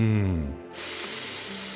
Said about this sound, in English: Shh. We're breathing in here